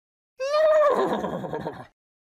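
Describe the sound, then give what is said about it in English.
A single horse whinnies loudly: a high, bright neigh that breaks into a shaky, fluttering whinny before cutting off after about a second and a half. “Think a race on a horse on a ball with a fish.”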